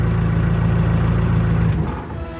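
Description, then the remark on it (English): A van's engine roars and revs with a loud, steady low drone as it speeds through a security gate toward the hangars, then drops off sharply near the end as the sound fades. No voices are heard. “She's not sure how that happened, but she steps on the gas and barrels through the security gate and heads toward the hangars.”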